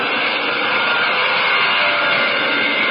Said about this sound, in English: How many Spitfires have you counted so far, Julia? I'm trying to keep track.